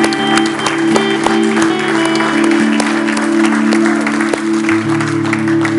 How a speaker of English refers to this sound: Come on, let's give the Lord a hand clap here this morning.